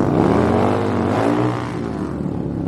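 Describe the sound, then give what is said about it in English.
A loud motorcycle engine roars and revs in the start-up pits, its throaty, guttural pitch climbing and then easing off into a steady rumble, with no voices. “The guttural roar rising from the startup pits was Flag Marshal Shane Adderton's cue.”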